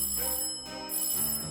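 A doorbell chimes with a brief run of clear, ringing tones that hang and overlap, fairly loud, with no voices, announcing the arrival of Lady Hyacinth.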